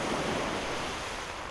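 Sea waves wash steadily onto an island shore in a continuous, hissing rush of surf, fairly loud and even throughout, with a faint windy edge and no voices.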